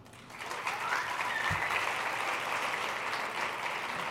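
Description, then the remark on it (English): Sustained applause from a crowd, a dense steady wash of clapping that swells in the first half second and holds at an even level throughout, with no voices standing out. “But I guess just maybe a round of applause.”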